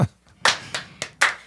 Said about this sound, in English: Can I start the slow clap? Yeah, you can start it.